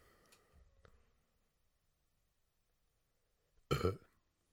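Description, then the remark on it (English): A single loud burp erupts after a long stretch of near silence, preceded only by faint low rumbling and a couple of quiet clicks. “It's going to be a long amount of silence until the burp comes in.”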